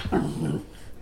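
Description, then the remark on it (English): A short burst of low, rumbling canine vocalizing from the dogs Lucy and Clover playing and chewing on each other, a growl with whiny, whimpering edges that fades after about half a second, leaving quiet. “Lucy's not ready to be a podcast dog.”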